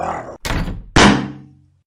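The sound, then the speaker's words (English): Three heavy thuds strike a front door in quick succession as flung foam heads hit it, each dull and loud, with the final impact ringing out briefly before fading to silence. “She nippily closed the entrance and avoided another beheaded foam head flinging and hitting the door like a stone out of a slingshot.”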